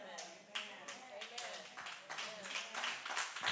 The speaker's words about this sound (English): I figured I'd get a few women in here clapping about that.